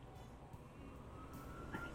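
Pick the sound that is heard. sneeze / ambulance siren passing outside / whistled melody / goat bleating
ambulance siren passing outside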